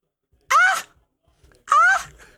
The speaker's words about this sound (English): So, yeah, I always enjoyed that little scream